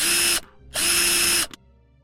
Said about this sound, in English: I make my way to the workshop and the power drill sounds begin.